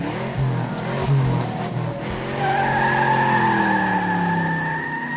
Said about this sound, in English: By the way, I have some audio of that car peeling out.